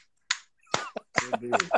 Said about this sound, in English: Someone's clapping in the background.